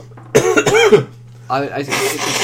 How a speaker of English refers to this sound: I'm going to quickly have a cough and a sneeze, or like a nose blow. I'll see if I'm going to leave this in or not.